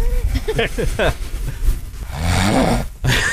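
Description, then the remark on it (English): Extremely loud, rough snoring, with harsh rattling breaths and a gravelly, drawn-out inhale near the end, preceded by a few short voiced grunting sounds. “extremely loud snoring.”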